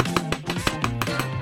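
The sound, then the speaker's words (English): A quick series of sharp hammer strikes, roughly eight evenly spaced blows in a steady rhythm, ringing out clearly over a bright musical background. “Tool call. Hammer.”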